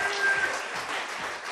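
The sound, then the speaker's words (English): An audience claps together in praise to the Lord in a dense, steady burst of applause, loud and continuous throughout, with a faint tonal whistle-like note briefly riding over the clapping at the start. “So let's give a good hand praise to the Lord.”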